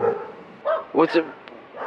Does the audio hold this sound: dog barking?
yes